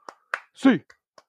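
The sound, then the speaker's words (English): Several sharp hand claps crack out at uneven intervals, fairly loud, with a brief drawn-out voice calling between them. This is the UCLA eight clap, a cheer by Bruins fans, counted from one to eight. “Get your hands in the air, Bruins fans. Get rocking and rolling. Final eight clap.”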